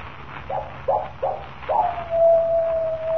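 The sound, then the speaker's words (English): A coyote howls alone: a few short rising yips, then one long, steady, wavering howl held to the end, over a faint low background hum. “When the coyote howls three times, I die.”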